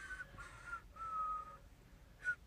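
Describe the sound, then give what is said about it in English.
Someone whistles Hot Cross Buns, a short, simple tune of a few descending notes, breathy and slightly airy, with one held note in the middle and a brief note after a pause. “That was hot cross buns.”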